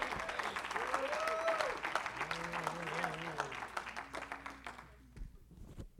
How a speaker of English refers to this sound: Praise God. Clap your hands all over the building to the Lord.